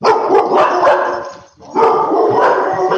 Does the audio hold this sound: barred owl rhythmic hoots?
no